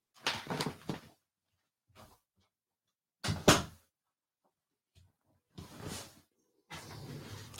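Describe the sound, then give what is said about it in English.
A little door in a house being closed: a handful of separate bumps and clunks spaced a second or two apart, with one louder thud in the middle and a rustling scrape at the end, no voices. “I'm going to close a little door here.”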